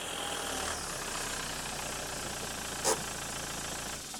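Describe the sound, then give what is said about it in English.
A car engine idles with a steady, low rumble and a constant hiss while the car is parked in a parking space in a car park at 1 a.m., broken once by a brief sharp clunk near the end; no one speaks. “is parking his car in his parking space in the car park”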